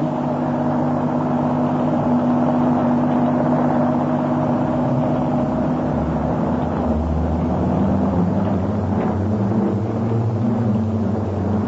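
A car engine hums steadily, its low drone shifting slightly in pitch as the car drives and slows on arriving at Muggeridge Farm, with no voices over it.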